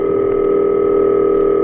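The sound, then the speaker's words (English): A steady, continuous telephone dial tone hums at an even, unbroken level for the whole stretch, loud, with no voices over it. “One evening, Steve called Johnny Carson at home and actually got him on the phone.”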